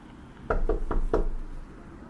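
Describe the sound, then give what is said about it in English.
Four firm knocks on the wooden front door of a house, made by a person standing on the porch, evenly spaced in quick succession, fairly loud, followed by quiet. “I counted to 10, then I knocked on the door.”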